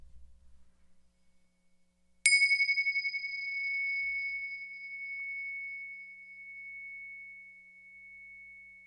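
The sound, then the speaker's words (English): A single meditation bell is struck after a brief hush, ringing out with a bright, high tone that hums and slowly pulses as it fades over several seconds. “Let's close with the bell.”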